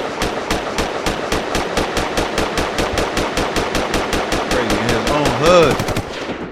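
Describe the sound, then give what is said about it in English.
A long, rapid burst of 21 gunshots fired as a 21-gun salute in tribute to a deceased man, in a steady, even rhythm, loud and sharp throughout, with a voice briefly calling out near the end. “We gonna let off 21 gunshots for my nigga Blazo Santana, man.”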